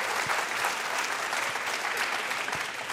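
audience round of applause

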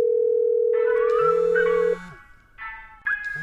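telephone call ringing

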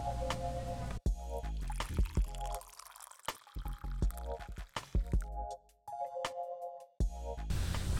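coffee being poured

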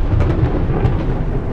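massive explosion

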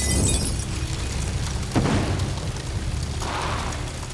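explosion sound effect

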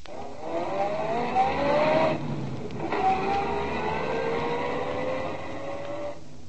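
car driving

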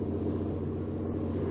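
truck engine rumbling

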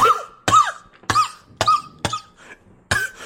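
cough

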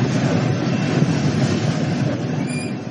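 train rolling on tracks

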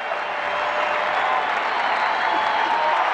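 stadium crowd cheering

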